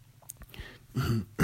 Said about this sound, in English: Let me clear my throat.